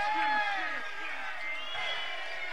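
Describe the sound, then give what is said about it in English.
A crowd cheers and whoops together, many high voices overlapping in rising, sustained shouts that stay loud and dense for the whole couple of seconds. “Can I have some noise for the scream?”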